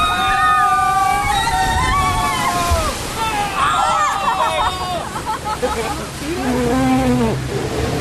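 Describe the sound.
Rushing, sloshing water churns steadily and loudly as a spinning raft ride goes down its first drop, with excited voices and shrieks from several riders mixed in throughout, rising and falling as the ride moves.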